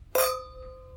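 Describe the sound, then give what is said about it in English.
Wine glasses of wine clink together once in a toast during a wine tasting, a bright tap followed by a clear ringing tone that slowly fades, with no talking over it. “All right. Well, cheers.”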